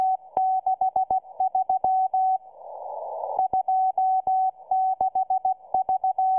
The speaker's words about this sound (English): It turns out to be a lot easier to understand the dots and dashes of Morse code in the scratchy signal from a distant radio broadcast than it is to make out the words spoken by even the most eloquent human operator on that same signal.